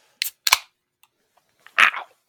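A can of Sasquatch Brewing Wood Boy beer cracking open: two sharp metallic clicks, then a brief, louder burst of fizzing hiss as the tab gives way, with no talking.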